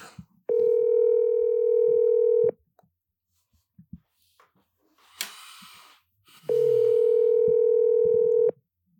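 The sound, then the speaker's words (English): A telephone ringback tone sounds twice, each steady buzzing ring lasting about two seconds, separated by a long pause filled with faint clicks and a brief burst of noise. “Let me answer the phone for you.”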